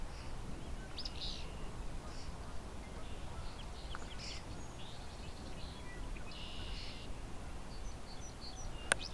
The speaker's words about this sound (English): As you can hear, the other birds around here, European starling, song sparrows, the occasional barn swallow. There's a couple of tree swallow boxes here, so the tree swallows keep coming in.